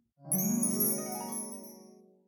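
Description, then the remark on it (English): Santa's bell, a bright bell, rings once with a shimmering, tinkling tone that slowly fades over about two seconds, clear with nothing else around it. “I'll fly away when I hear Santa's bell.”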